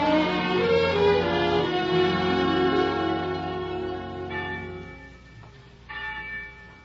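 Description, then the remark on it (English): Church bells clang loudly, their rich overlapping tones ringing out and slowly fading, with a couple of fresh strikes near the end. No one speaks. “But every day you read the papers and heard the gossip of the village, and every day the winds carried you the clangoring of the church bells, telling the news of some great victory.”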